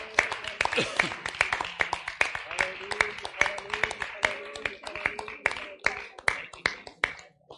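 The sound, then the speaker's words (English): An audience clapping their hands together, a dense, steady stream of sharp claps that keeps going for several seconds, with voices calling out beneath the applause. “hallelujah, yes, God, yes, let's clap our hands in agreement.”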